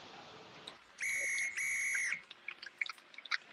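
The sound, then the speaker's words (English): A referee's final whistle at a football match at Hamden Park, where Ireland beat Scotland 1-0 to qualify for the World Cup, sounds two sharp, shrill blasts in quick succession, the second held longer, loud over the murmur of the stadium crowd. “Here's our reporter, Jeremy Carney's thoughts in Hamden Park immediately after the final whistle.”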